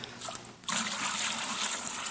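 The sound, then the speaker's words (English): Water is poured in a steady stream, starting softly and then swelling into a fuller, splashing flow after a brief moment. Fairly loud, with no talking. “Let's add some water, man.”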